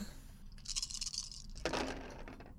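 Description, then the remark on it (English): Glitch dice rattle briefly in a cup or hand, then tumble onto a hard surface with a quick clattering burst that fades out. It's moderately quiet, with no talking. “Now we can move on to the glitch dice.”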